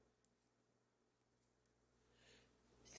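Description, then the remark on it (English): After nearly three seconds of near silence, a single loud sneeze bursts out abruptly at the very end, cut off mid-burst. “Oh, excuse me. I was sneezing.”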